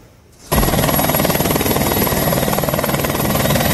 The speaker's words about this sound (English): One of the hikers is stuck in a gully. North Shore Search and Rescue now using a helicopter to try and get this man out. They're using a long line rescue.